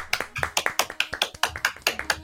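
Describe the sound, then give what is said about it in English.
A quick series of sharp, crisp hand claps into microphones, a dozen or so bright smacks in fairly even rhythm with no talking. “Three, that's three claps into microphones.”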